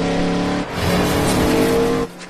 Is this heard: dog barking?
no